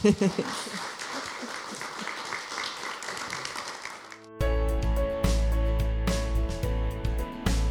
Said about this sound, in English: So thank you to everyone for your contribution. Yeah. So yeah, it'd be great just to give … another round of applause, I think.